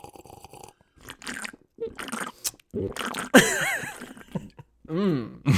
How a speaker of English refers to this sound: I'm going to take a sip of this root beer again. Okay. I'm going to have another little sip, too.